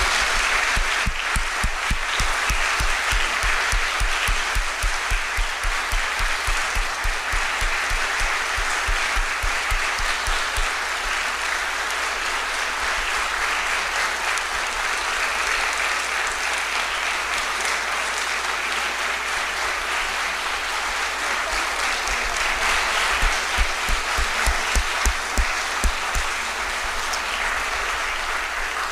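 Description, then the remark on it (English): Sustained applause from an audience for the choir and instrumentalists, a dense, steady wash of clapping that holds for the whole stretch with no voices heard, with sharper individual claps standing out briefly. “if you would just give them another round of applause.”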